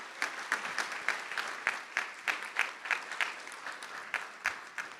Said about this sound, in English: So may I invite everyone once again to give our panelists a very warm round of applause to thank them.